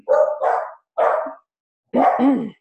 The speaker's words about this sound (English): And the guard dogs, my little corgi dogs. Yeah, well, aren't they special? Not right at the moment.